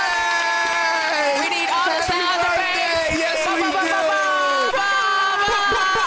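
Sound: audience applause and cheering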